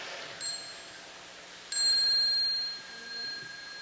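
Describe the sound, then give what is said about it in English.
A small bell is struck twice, about a second apart, each ring bright and high-pitched, lingering briefly before fading, rung as the signal for the children to stand up and bow to the Sangha before they go out. “So when the children hear the sound of the little bell, they stand up and bow to the Sangha before they go out.”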